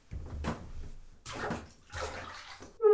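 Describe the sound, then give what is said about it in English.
Someone climbs into a filled bathtub, with three bursts of water sloshing and splashing around them, followed by a brief bright tone at the very end. “Right, into the bath.”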